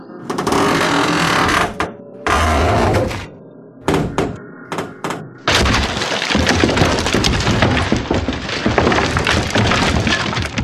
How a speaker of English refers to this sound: the hoodoo that you did did do some hoodoo to this place. It's creaking, groaning, and beginning to collapse.